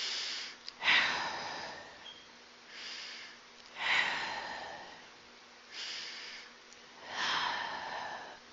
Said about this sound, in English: So step one, take 10 slow breaths. Those are deep breaths, right? And this is part of meditation as well. So focus on breathing out as slowly as possible until the lungs are completely empty.